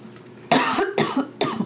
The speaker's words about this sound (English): And I have to cough.